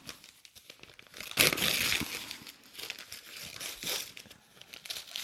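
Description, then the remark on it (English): Gift wrapping paper being torn open on a present holding The Outsider TV mini-series: a sharp ripping burst followed by several seconds of steady crinkling and rustling, with a second quicker tear near the end. No one speaks. “So you'll open up this one.”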